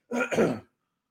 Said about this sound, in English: I have a piece of Reese's stuck in my throat. I don't know how that's even possible, but I ate a Reese's and all of a sudden I have something stuck in my throat. So I might be coughing a lot.